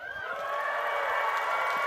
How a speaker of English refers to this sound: A lot of people not from Eastbourne are clapping that, which is wonderful, okay?